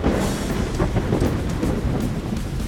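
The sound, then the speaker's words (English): A steady, dense roar of torrential rain that has gone on for five hours, with deep rumbling thunder underneath, loud and continuous throughout, with no voices. “The rain has not stopped for 5 hours, and it's coming down in a torrential storm.”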